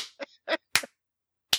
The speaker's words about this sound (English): Why are you doing that? Why is that your defense? Like, you look confused, and you're just, like, slapping your hands.